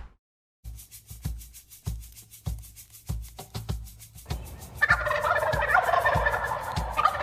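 A wild turkey gobbler gobbles loudly, a rapid rattling burst rising over steady rhythmic low thumps, with the gobble swelling into a bright, sustained warble near the end. No one speaks.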